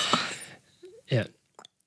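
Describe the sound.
A few short silly noises made with the mouth: a breathy burst, a low wobbling tone, then a buzzy mouth-fart sound, ending in a small click. Fairly quiet, with no words.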